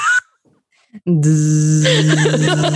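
A vibrator buzzes loudly against a microphone: a steady, low, droning hum that kicks in after a short pause and holds unbroken for almost two seconds, with scattered rougher noises layered on top.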